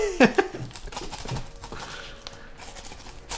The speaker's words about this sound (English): I bought wrapping paper that sellotape doesn't stick to, which is not a great look. You don't usually have to peel tape off, do you?